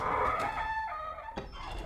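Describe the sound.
A voice imitates a creaking door with a drawn-out, strained, wavering squeal that slowly slides in pitch, breaks off, then returns in a short rougher burst at the end.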